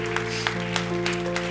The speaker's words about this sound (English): Come on. Keep clapping.